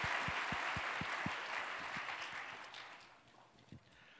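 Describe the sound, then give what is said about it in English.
A crowd applauds a middle school choir with a dense, steady wash of clapping that gradually thins and fades out over a few seconds, with some soft low thumps underneath and no one speaking. “And one more applause for a wonderful junior high school choir, Yes.”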